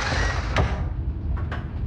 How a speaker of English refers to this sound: Anyway, engage autopilot. I'll investigate. Good luck. Cockpit door opening.